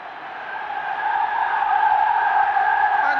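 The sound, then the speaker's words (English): A large Liverpool football crowd roars as the players approach the Kop, a sustained, dense wash of voices that swells steadily louder over a few seconds, with no individual speech standing out. “And now listen to the roar as they approach the cop.”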